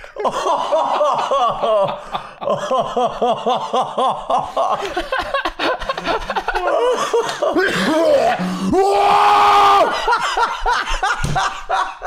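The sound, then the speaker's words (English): Loud fits of laughter break into harsh coughing, with rapid chuckling bursts followed by a strained, raspy coughing spell near the end. “Fuck this cough.”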